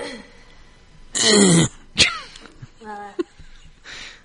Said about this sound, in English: It's best to clear your throat directly into the mic.